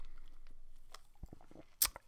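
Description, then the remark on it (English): Someone drinks sparkling water: a run of quiet wet mouth clicks and gulps, then a sudden bright fizzing hiss that fades, with a second short burst right at the end. “Anyway, let me take a drink of this.”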